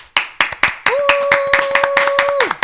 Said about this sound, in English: Woo! Stop clapping.